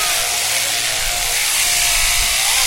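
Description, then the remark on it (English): Electric shears buzz steadily while shearing a sheep, starting on the left side of the brisket and clearing the belly wool first, a loud, continuous high-pitched motor whine with a faint low rumble beneath and no pauses or talking. “Alan goes Sheep Shearing”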